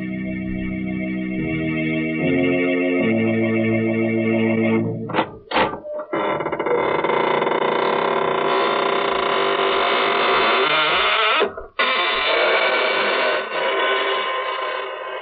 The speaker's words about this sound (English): Good evening, friends. This is your host of the Inner Sanctum. Welcome through the squeaking door.